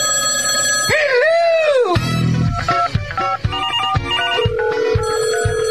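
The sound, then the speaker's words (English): A loud, bright electronic phone ringtone signals an incoming call: a swooping tone at the start, then a quick melodic run of stepped notes over a low hum, with no talking. “All right, we do have a call coming in.”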